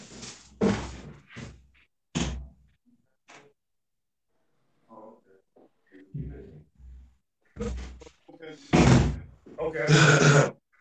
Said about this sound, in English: Hold on for 1 sec. Somebody keep knocking on my door.